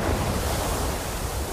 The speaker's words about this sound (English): you can add in some like sea sounds.